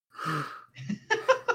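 A person yawns up close: a long, breathy intake of air, then a few short voiced, groaning pulses as the yawn trails off. No other sounds.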